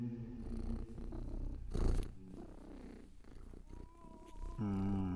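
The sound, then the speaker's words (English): A white cat purrs steadily and fairly loudly while being stroked, a low continuous rumble with a brief louder swell midway and some sustained tonal sounds near the end. No one speaks. “Meanwhile, across the pond, history's go-to bad guys are stroking their white cat.”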